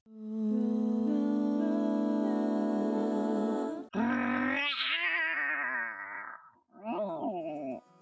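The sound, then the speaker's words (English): A singer-songwriter holds a long, steady sung note, then switches to a loud, gravelly vocal imitation of a roar, followed by a shorter wavering growl. “That was our guest, singer-songwriter …, roaring us into the episode.”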